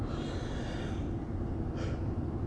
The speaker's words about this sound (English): How tired I can be as I yawn.